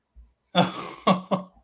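Harsh coughing: one long raspy hack followed by two shorter, sharp coughs in quick succession, with no talking.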